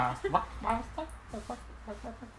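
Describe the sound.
A person's voice does a chicken impression, with a quick run of short, choppy, throaty clucks, rising and dropping in pitch over a couple of seconds.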